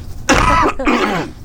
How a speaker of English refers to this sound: I'm going to cough.